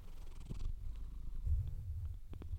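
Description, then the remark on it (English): A cat purrs into the microphone, a low, steady rumbling drone that swells and eases with its breathing, with a few faint clicks in the background and no talking. “I'm trying to get purrs on the microphone.”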